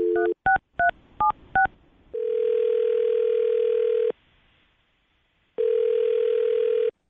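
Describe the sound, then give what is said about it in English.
A phone keypad beeps out a quick run of five dial tones, followed by two long, steady ringback tones separated by a pause of silence, heard clearly with no talking. “I'm going to dial her phone number right now and let you make your Awkward Tuesday phone call”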